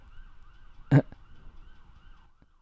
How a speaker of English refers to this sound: I love that there's a siren going right now. That's awesome. The mic's not gonna pick it up, but I love ambient noise. It's always hilarious.